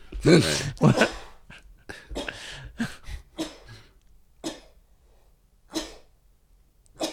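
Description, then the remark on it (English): A person sneezes twice in quick succession, loud, followed by a string of softer, short breathy bursts and sniffs trailing off over several seconds. “It's so upsetting when … sneezes.”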